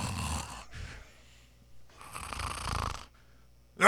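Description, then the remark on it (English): A voice imitates loud snoring, with two rough, rattling snore breaths, the second one longer, followed by a brief sharp burst at the end. “You were snoring.”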